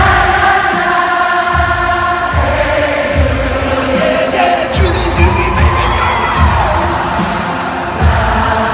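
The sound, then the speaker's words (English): A huge concert crowd of tens of thousands in Seoul, Korea cheers and screams continuously, a dense roar of many voices with shrill high-pitched shrieks cutting through, loud and sustained with a few rhythmic low thumps underneath. “How would you feel if you were in a concert and the entire crowd swelled up like that?”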